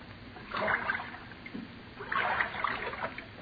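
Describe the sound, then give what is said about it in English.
Two swells of water slosh and splash against a small boat, each lasting under a second with a short lull between, with no voices over them. “Now, Charles, steer the boat.”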